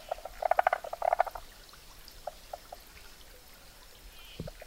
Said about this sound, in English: And this one is a southern barred frog.